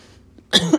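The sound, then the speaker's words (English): A single harsh cough from a person with throat issues bursts out after a brief quiet moment, loud and raspy with a throaty rattle at the end. “And would also explain the coughing here and there.”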